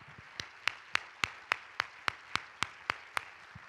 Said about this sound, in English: We need to give him a hand clap of appreciation. That means something.